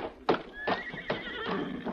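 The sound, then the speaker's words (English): A white horse standing near a hitch rail whinnies, a high, wavering neigh broken into four or five pulsing bursts over a couple of seconds, moderately loud with no voices. “There is a white horse standing near the hitch rail.”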